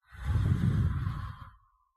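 A long, deep exhale lasting about a second and a half, breathy and fairly loud, swelling quickly then fading out slowly, with no talking over it, done as part of a breathing exercise.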